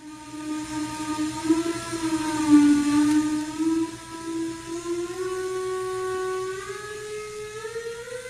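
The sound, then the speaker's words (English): A factory whistle in York, Pennsylvania, part of a community celebration tradition, blows in one long, steady blast, a loud low-pitched tone with rich harmonics that wavers and rises slightly in pitch over about eight seconds, with no talking. “It takes them back to their childhood, to a time when you would hear the whistles, to a time when being a citizen of York, Pennsylvania meant something a little bit different.”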